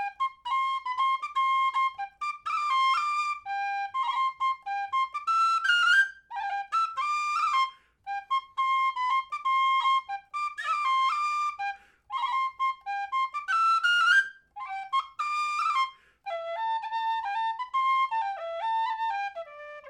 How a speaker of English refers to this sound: I think it's Braise of Mar is what you're thinking. And I'll just play it here, kind of as I remember it, on whistle to satisfy that, that ringing in your ear of, what is this tune?